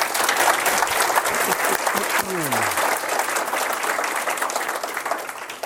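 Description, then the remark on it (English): A crowd claps steadily and loudly for several seconds, applauding the Ultra Rosary Society for offering refreshments, a dense, even wash of many hands. A brief sliding vocal sound, like a falling whoop, cuts through the clapping midway. “Let us applaud them in particular.”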